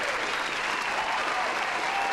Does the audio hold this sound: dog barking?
no